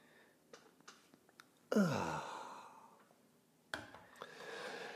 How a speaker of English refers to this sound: And so, I invite you to enjoy the dopamine hit of the day, the thing that makes everything better, the second simultaneous sip, maybe the first for you. Go.